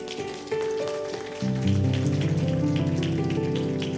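Steady crowd applause patters throughout as an audience applauds a man called up to the front, mixed with sustained organ chords that step up in loudness twice, the music growing fuller and louder by the second half.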